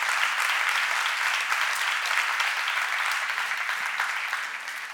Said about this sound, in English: If you love that, give me a clap, would you? Actually, give God a clap. Don't clap for me.